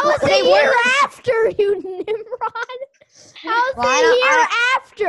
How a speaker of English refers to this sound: How do you feel about these kids screaming at each other? Yeah, it's pretty funny, right? Pretty funny, yeah.